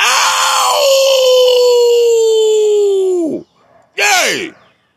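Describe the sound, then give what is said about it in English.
A person lets out a long, loud, sustained howl that slides downward at the end, followed by a second, shorter falling howl, imitating a dog howling. “Okay, like, that makes the dogs go crazy.”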